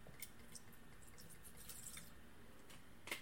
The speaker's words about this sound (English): All right. Let's pour us a little swig here.